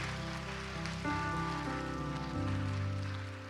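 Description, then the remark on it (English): A church audience applauds to celebrate those who gave their hearts to the Lord that day, a steady, dense wash of clapping that holds for several seconds, while sustained keyboard chords shift underneath. “Family, would you applaud and celebrate those that gave their hearts to the Lord today?”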